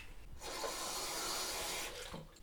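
Water runs steadily from a tap into a measuring jug for about a second and a half, a hissing pour that starts and stops abruptly, with no talking over it, as 1 pint of water is measured out.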